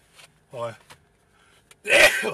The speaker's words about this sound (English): Sorry, I had to sneeze. I'm allowed to sneeze every Saturday. My doctor said I can sneeze on Saturdays.